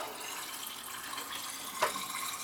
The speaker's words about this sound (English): Fill this up with some water. Fill this up with some filtered water. So for stopping, they recommend agitating with water for a minute. Just one fill up of water.